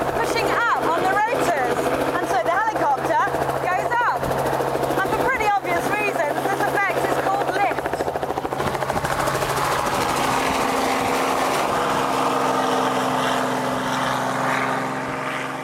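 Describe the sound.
The rotors of a 2.5-ton helicopter spin up for takeoff with a loud, steady turbine roar and droning whir, sending air rushing downwards, while indistinct talking is faintly audible over the noise in the first half.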